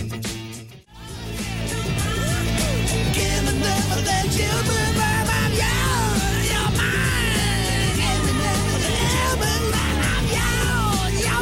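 A man sings loudly along to a driving rock track, his raw, almost shouted vocals riding over dense guitars and drums that play steadily after a brief dropout near the start.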